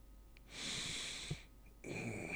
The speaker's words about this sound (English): This man is breathing.